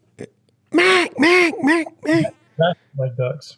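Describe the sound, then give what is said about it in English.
A duck call blows a run of raspy, nasal quacks: four loud, drawn-out ones in quick succession, then a few shorter, softer quacks trailing off. “Ooh, that sounded ducky.”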